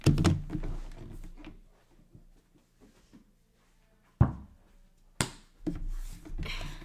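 A basketball shot, taken from a chair, misses and clanks off the rim with a sharp impact, followed by a couple of heavy thuds as the ball drops and bounces amid some rustling noise.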